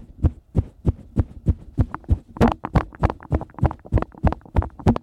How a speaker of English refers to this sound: Whenever you pick up an arrowhead, did you hear like the distant beat of tribal drums? Yeah. Yeah, we did. We definitely.